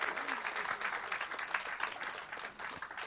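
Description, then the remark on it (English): A church gathering applauds after testimonies, many hands clapping in a dense, continuous patter that holds at a fairly even loudness throughout, with no voices standing out above it. “Let's give a round of applause, because isn't that excellent?”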